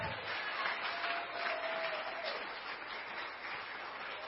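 An audience at Crosspoint claps for eight children, four girls and four boys, who accepted Christ at camp. The applause is a dense, steady burst that holds at a fairly even loudness for about four seconds, with a faint tonal call or whistle briefly rising above the clapping.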